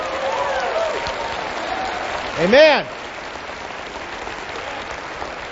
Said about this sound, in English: And it deserves more than... Can we give it an appropriate round of applause?